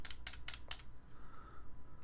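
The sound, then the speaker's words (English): Four crisp plastic clicks in quick, even succession as buttons are pressed on a Switch game controller, followed by a low background hum with no talking. “You're clicking buttons on a controller. That's not a real mouse.”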